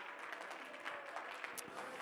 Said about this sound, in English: Well, let's clap our hands to the Lord and give him praise together.